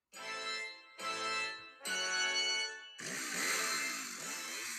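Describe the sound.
A voice makes fart sounds with the mouth: three buzzy, raspy blasts about a second each, then a longer, noisier sputtering one, fairly loud with no talking.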